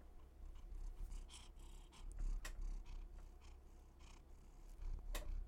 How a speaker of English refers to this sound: Speak. Can you hear her purring?